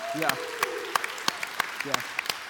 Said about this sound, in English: Can we clap up for them really quick?